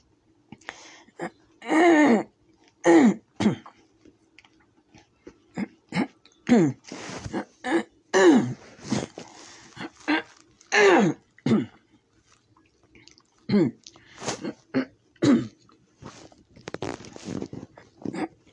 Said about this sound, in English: Okay. Clear my throat a little here.